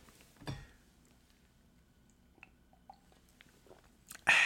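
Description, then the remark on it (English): A quiet sip of water with soft mouth clicks and a swallow, a brief thump near the start and a sudden louder burst of noise right at the end. No talking. “Sorry, a little water or something else.”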